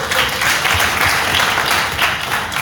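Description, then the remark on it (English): A crowd applauds a boy who has just given his answer, with dense, continuous clapping that stays loud and steady for a few seconds, individual claps blurring into a broad wash of noise. “Let's clap for him.”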